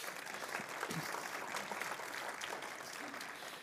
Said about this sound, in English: So thank you, worship team. That was just really, really, really, really refreshing. So clap for the worship team, please.